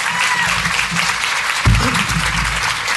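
A steady wash of audience applause at the IPBC event, welcoming two speakers, many hands clapping densely and evenly at a fairly loud level, with a brief low thump partway through and no talking over it.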